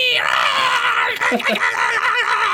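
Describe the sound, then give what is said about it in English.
A voice imitates a monstrous morning hell cock's crow as a loud, shrill, sustained scream, wavering and strained across a few seconds, harsh with no other talk. “Just then, Graw's bell tower began to ring as the morning hell cock began to crow.”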